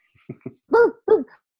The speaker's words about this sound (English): As my dog barks.